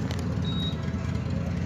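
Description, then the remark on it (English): A motorcycle engine idles with a steady, loud, low rumble that fills the whole clip, and a brief thin high whine briefly rises above it partway through. “I'm annoying the motorcycle.”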